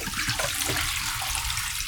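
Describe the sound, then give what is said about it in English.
Tap water pours and splashes steadily into and out of a film developing tank while rinsing film, a continuous hissing rush with gurgling underneath, moderately loud, with no one speaking. “And then fill it up again and invert it 10 times and dump that out again.”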